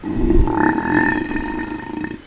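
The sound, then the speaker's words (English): A hobgoblin lets out a long, loud burp that rumbles for about two seconds, deep and gurgling with a tonal drone, standing alone without any talking. “The hobgoblin you're talking to burps really loudly.”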